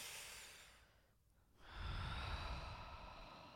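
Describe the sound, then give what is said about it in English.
A slow, relaxed breath drawn in through an open mouth with the whole body relaxed, soft and airy, followed by a fuller rushing exhale; no talking. “In through your mouth.”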